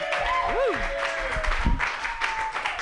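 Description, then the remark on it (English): A comedy show crowd applauds steadily and loudly for about three seconds as the first comic, a radio show host, is brought up, with dense clapping mixed with rising whistles and cheering voices. “Give it up for your first comic”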